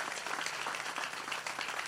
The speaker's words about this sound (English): If you believe it, I need you to clap your hands and give God praise in this tent.